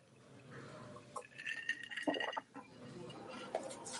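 Glasses clink together in a toast to the friends of Bnei Baruch at a shared meal, several bright ringing taps over a busy background of murmuring voices and table clatter.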